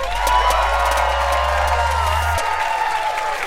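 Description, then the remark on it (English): A live audience cheers and applauds steadily, a dense wash of clapping and excited shouts sustained at a loud, even level throughout, with a low hum underneath. “You guys are such a beautiful crowd. Are you guys having fun?”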